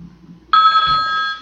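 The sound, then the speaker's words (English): A telephone ring sound effect sounds once, loud, a bright electronic trill that cuts in abruptly after a quiet moment and holds steady for about a second, with no one speaking. “Is there a phone?”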